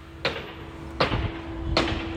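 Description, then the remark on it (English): Three sharp hammer blows from a man hammering something in land at an even, steady pace, each a hard thud with a metallic ring, over a low constant hum. No one speaks. “I mean, how many hits do you need to hammer the fucking thing in?”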